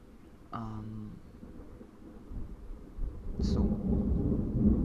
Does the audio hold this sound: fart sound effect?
no